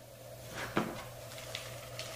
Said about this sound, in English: I don't think they can hear that. They're probably like, what is that rustling in the background? It's popcorn. If you don't know, she was just shaking the popcorn bowl.